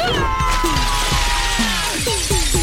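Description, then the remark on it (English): A loud, sustained crash of breaking glass as a battle dress crashes through it, from season two of The Res, with bright ringing shards and sharp tinkling pieces scattering and falling for a couple of seconds, unaccompanied by voices. “Preen, can your battle dress crash through this glass?”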